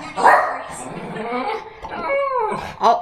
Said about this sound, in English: Yes, he's telling you. He feels my pain. He's going to keep barking until I acknowledge him. I'm so sorry, everybody.